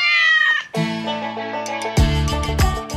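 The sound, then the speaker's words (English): A cat meows loudly, letting out several drawn-out, wavering cries in a row with brief gaps between them, and no one speaking. “And the cats I love are the Kat-dashians.”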